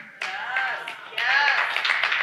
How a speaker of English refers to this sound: Now, some of you clapped, but some of you didn't, because you're kind of like, meh.